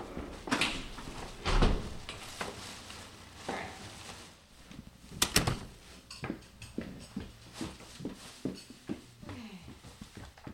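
A door, held open with a foot by someone balancing four grocery bags, swings and thuds shut, with a few loud knocks and clatters of handling, followed by a quick series of lighter clicks and taps.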